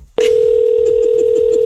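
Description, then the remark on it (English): A steady, loud telephone dial tone begins abruptly and holds, with faint rhythmic clicking pulses beneath it, as a prank call is placed for the Friday Phone Jacks segment. No one speaks. “She is the perfect victim for y'all's Friday Phone Jacks prank call.”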